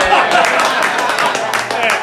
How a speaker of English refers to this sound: Can we edit that applause out?